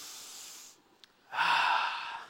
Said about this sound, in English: You are here on planet Earth for a reason, and if you are breathing, let's all take a breath together.